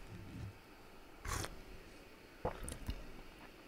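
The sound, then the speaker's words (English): Quiet mouth noises with a short wet slurp near the middle and a few smacking, squishy sounds afterward as someone takes a sip of coffee. No one speaks. “Try that coffee.”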